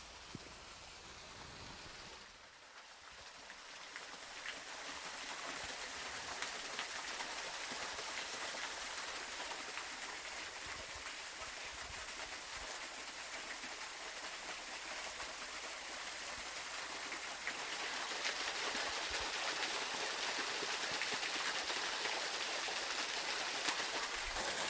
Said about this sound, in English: That is the beautiful sound of the brook coming crashing over a layer of sedimentary bedrock and onto the gravel down below. As waterfalls go, it is delicate and to some probably not even noteworthy.